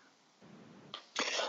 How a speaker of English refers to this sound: I've still got the same tickly cough, guys.